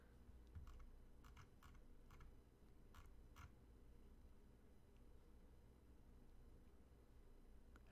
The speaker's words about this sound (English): I can no longer hear you. I am typing into the chat to no longer hear you. If you're speaking to me.